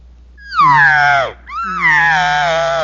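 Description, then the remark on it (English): Two loud, high-pitched elk calls from a double reed: a wailing squeal that slides downward and breaks off, then a second call that swoops up and holds a raspy, reedy tone. “And so here's what it would sound like if I go to a double reed.”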